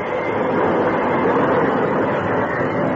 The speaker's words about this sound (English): As with the help of the engineer, he applied the brakes and found the train coming to a stop.